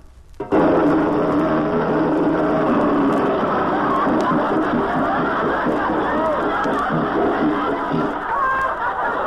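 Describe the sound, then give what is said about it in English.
A riveter's hammer clatters in a loud, continuous rapid-fire burst for several seconds, a dense metallic racket that starts abruptly and stops just as suddenly. “Look, a riveter's hammer.”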